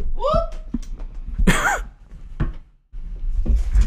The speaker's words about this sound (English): Whoop. Sorry, don't mind me. I'm knocking shit over. I was about to ask, are you good? Yeah. No, I was reaching for something and I knocked my mic stand over, but I didn't hit anything, so we're good. I caught it.